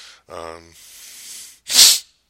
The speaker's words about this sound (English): Excuse me, I'm going to sneeze.